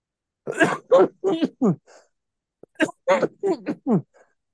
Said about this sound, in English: You can't cover for a second while I cough, dude? Yeah. At least I mute my mic when I cough. You didn't, though. I heard you coughing.